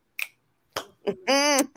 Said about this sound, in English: Hand claps. Yes. So you know it's real. You know it's real. Uh-oh. Hand claps.